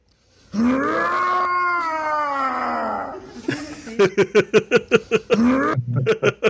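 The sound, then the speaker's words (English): A man's voice imitates an animal, loud: first a long, wavering howl-like cry, then a quick run of rough, pulsing growls. “It is growling and stuff.”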